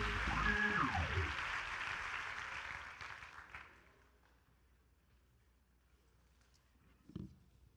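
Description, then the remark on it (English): An audience claps together in a dense, sustained burst of applause that gradually fades out after a few seconds, followed by quiet and one last isolated clap. “If and only if you're going to help me preach tonight, clap your hands and you may be seated unto the Lord.”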